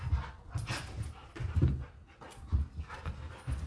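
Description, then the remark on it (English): Two dogs, Bogey and Dasher, pant heavily in quick, rhythmic breaths while play-fighting indoors on a rainy day, with soft scuffling and an occasional faint whimper. No one speaks. “They've been doing this for about an hour now outside.”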